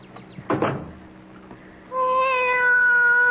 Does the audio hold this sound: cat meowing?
yes